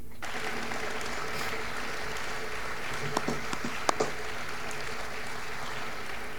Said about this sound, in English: Let's listen in. Lots of cheering. Everyone is excited, as well as we should be.